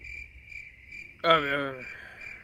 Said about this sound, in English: I really might go and get a cricket noise to drop after that.